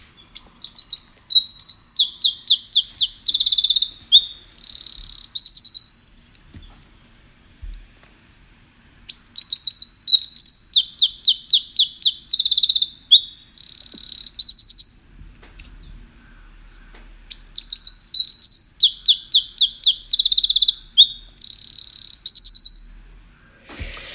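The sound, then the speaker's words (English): Three loud bursts of high, rapid wren song, each about six seconds long with brief pauses between, packed with fast chattering trills, with no talking. “At some point there in each of the phrases, it inserted this really rapid, it's like a burst of machine fire.”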